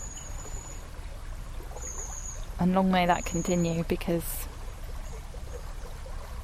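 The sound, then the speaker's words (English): A steady wash of flowing river water runs throughout at moderate level, with a man speaking briefly over it in the middle. “the river is, after all, the lifeblood of these places.”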